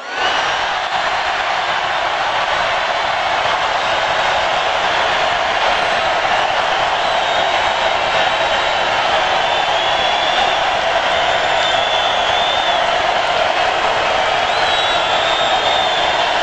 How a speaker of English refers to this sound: The crowd has cheered louder. One guy clearly cheered twice. It doesn't count. Listen, the roar continues.